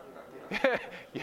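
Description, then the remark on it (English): A dog gives a couple of short, sharp barks, not loud, with a brief pause between them against a quiet background. “we got some dog”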